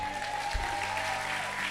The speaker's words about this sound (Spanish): Un aplauso a Jesús.